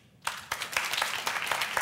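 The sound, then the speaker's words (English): After a brief moment of quiet, an audience breaks into applause to vote that sexual addiction is a genuine addiction: a dense, steady patter of many hands clapping at a moderate level, with no voices over it. “By applause, if you agree that it is, applaud now.”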